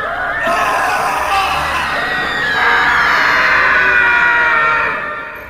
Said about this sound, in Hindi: घूर घूर के सारे पुतलों को देख रहा था कि तभी उसे ऐसा लगा मानो दरवाजा बंद हुआ और शुरू हुई कमरे में लोगों के दर्द से चीखने की आवाजें। उसे ऐसा लग रहा था मानो कैदियों को उसके सामने मारा जा रहा हो, उनकी आंखों में शराब डाली जा रही हो उन्हें तड़पाने के लिए।